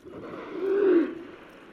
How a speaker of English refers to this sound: You hear that now? They also make loud trumpeting sounds.